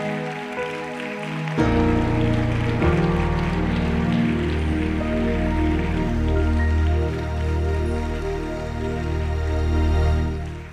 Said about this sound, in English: Come on, stand on your feet and give them one more applause. One more.